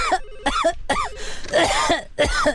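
A run of five or six loud, hacking coughs in quick succession, close up and strained, each with a raspy voiced edge, with no talking in between.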